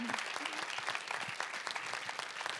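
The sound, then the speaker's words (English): Steady clapping from an audience applauding a case's lead counsel as she stands up, a dense crackle of many hands at an even loudness throughout, with a faint voice briefly audible underneath near the start. “Give her a round of applause, fighting the good fight.”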